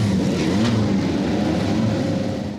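A race car engine revs loudly as the car sets off up the hill at the Festival of Speed, a steady, throaty roar with a humming tone that holds for a few seconds before cutting off abruptly. No one speaks.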